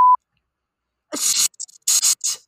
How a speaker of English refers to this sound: I'm beeping all of that out. No, you're not. Yes, I am.